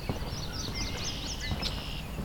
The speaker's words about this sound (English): I've got some marsh wrens vocalizing. Question is, can I get them close enough to hear them well?